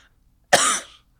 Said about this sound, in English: And …, you cough.